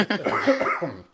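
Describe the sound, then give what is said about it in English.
A person coughs from a residual post-viral cough, a short burst followed by a rougher, throaty cough that trails off within about a second, with no talking. “yes, I have some residual post-viral cough.”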